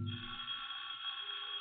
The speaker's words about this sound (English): The doorbell rings, and Mrs. Davis goes to answer it.